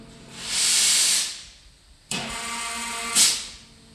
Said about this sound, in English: The boiler beneath the tank hisses and billows steam before a jet propels into the water tank, exploding at the surface like a fountain.